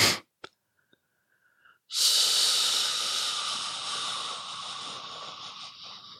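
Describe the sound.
After a couple of quick breath clicks, a person lets out a long, steady hissing exhale through the mouth as an out-breath technique, imitating a balloon deflating, bright and airy, slowly fading over about four seconds.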